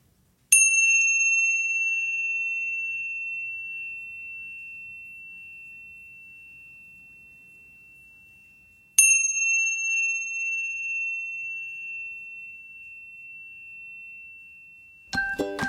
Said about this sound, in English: would you like to do the chimes so we can take a few moments to let these inspired actions sink in?